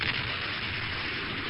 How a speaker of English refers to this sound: We found this sonic boom online. We wanted to give you an idea what he was talking about.